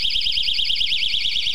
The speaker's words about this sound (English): It's a safety whistle.